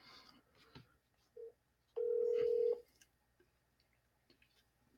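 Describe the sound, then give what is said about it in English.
A short electronic beep, then a single steady ring tone from an outgoing phone call, lasting under a second, clear and fairly loud over faint background noise. “See if he'll answer the phone while you're looking for those questions.”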